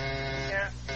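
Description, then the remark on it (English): A harsh, steady electric house buzzer signal, two shorts and a long, drones, cuts out briefly near the end, then starts buzzing again. The tone is rich and humming, with no voices. “It's my buzz, dear. Two shorts and a long.”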